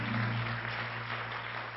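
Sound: audience applause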